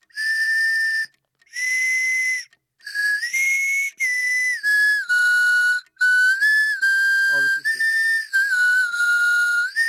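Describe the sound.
A person whistles a song melody alone for others to guess in a quiz game, clear and high-pitched, with sustained notes and short phrases separated by brief pauses, shifting pitch smoothly between held tones.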